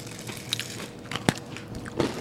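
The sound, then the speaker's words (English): Crunching as someone bites and chews a crunchy oatmeal cookie, with several sharp, crackly bites spaced irregularly over a soft background hum; no talking. “It's kind of crunchy.”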